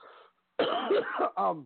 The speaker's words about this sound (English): apologize for everybody hearing me coughing. I'm trying here.